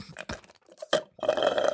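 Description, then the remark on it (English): Loud slurping from someone sipping water: a few wet mouth clicks and smacks, then a longer gurgling sip and swallow. “sipping on water because I don't have tea.”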